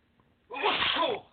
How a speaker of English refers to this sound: Excuse me. Sorry about that. Probably going to sneeze again. Hold on.